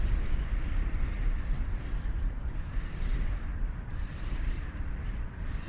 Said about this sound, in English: feel yourself settling more into your body, letting your ears open up and taking in the sound of the wind.